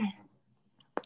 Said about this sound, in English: I don't know if you're coughing because of malaria. Or I'm coughing because of everything.